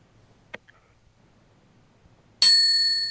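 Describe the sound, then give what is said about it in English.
A single bright bell strike rings out loudly after a quiet stretch with a faint click, its clear metallic tone sustaining and slowly fading. “I forgot the bell.”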